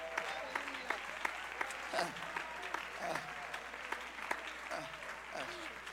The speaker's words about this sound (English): Hallelujah. Clap your hands unto the Lord if you believe.